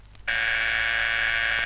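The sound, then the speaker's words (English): An intercom phone buzzes once, a harsh, steady electric drone holding one pitch for about a second and a half before cutting off abruptly, with no voices. “Here's your intercom phone. Ring down and say you wish to be alone.”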